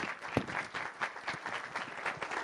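Steady audience applause welcoming two guests, a dense patter of many hands clapping at once, with a few sharper claps standing out near the start. No one speaks over it.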